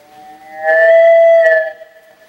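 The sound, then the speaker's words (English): A bell is struck and rings out with a steady, mid-pitched humming tone, is struck a second time, then slowly fades away. No one speaks. “I'll come up there and draw the sounds of the bell.”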